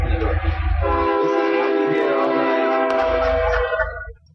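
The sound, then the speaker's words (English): A loud train horn blares in one long sustained chord while the heavy low rumble of a huge passing train rolls underneath, fading out at the end; heard from a hotel room in Goose Creek. “There's a huge train that goes by here about once every year.”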